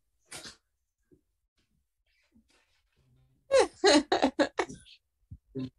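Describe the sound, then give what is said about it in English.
A dog makes noise: one short sharp burst, a pause, then a rapid run of loud yelping vocalizations that trail off into a couple of fainter ones. “You're a wrestling dog. You're supposed to be quiet.”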